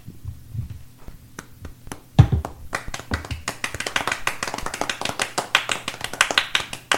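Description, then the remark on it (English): A few scattered claps over a low steady hum, then a soft thump, after which applause from the live audience in the bleachers at a live show swells into dense, continuous clapping that keeps building to the end. “Let's get the audience clapping again, though.”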